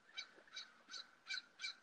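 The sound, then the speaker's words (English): A crow caws five times in a steady, evenly spaced series of harsh calls, fairly quiet, with no one talking. “Clearly we have a, I don't know, what is that, a crow? That's what it sounds like, a crow.”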